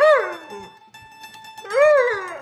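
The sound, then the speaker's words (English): A female Border Collie Black Lab mix dog howls in two long, wavering, rising-and-falling cries separated by a short pause, fairly loud, with faint background noise in between. “And, she's a Border Collie Black Lab mix, and she's going to sing for you first.”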